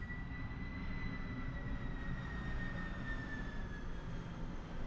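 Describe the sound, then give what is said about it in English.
A steady, rumbling roar of an aircraft passing overhead, with a faint high whine gliding slowly downward across the whole stretch, no voices present. “Can you hear it? Yeah, I could hear that one. It is kind of magical in general. And when they fly in at night”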